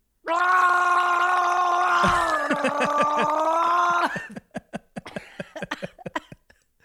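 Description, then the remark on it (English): A voice imitates a person's long, strained yell from the bathroom, as heard from the living room, held loud for several seconds with a shaky, pulsing edge, then breaking into short choppy bursts that trail off. “you don't have to yell”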